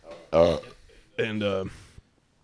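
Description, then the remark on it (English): Two loud burps, a short deep one followed by a longer, drawn-out belch after a brief pause, with no other sound around them. “It smells like burps in here.”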